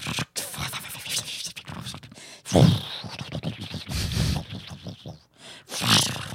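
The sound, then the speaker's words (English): A big fire burns at night through an old wooden building, started by a campfire left running, with a loud, steady roar, thick with irregular crackles and snapping pops that surge and dip over several seconds; no one speaks. “Let's hear a bit of that fire a bit louder.”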